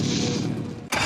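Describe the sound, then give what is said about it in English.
A boat engine cranks and roars to life, a loud, rumbling drone with a quick catch partway through before it surges again. No voices. “For over 30 years, boaters and fishermen have counted on Nationwide to fire up their engines”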